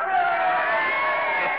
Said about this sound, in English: Come on, they want you outside. They're yelling for you.